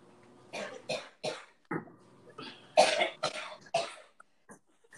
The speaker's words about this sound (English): You know, I had a couple nights ago, a cough like that attacked me just out of the clear blue.